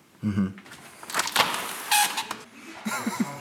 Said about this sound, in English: Okay, here's what I'm going to do. This will be a funny piece of audio. I'm going to turn up the microphone here. Okay. And I'm going to open the door.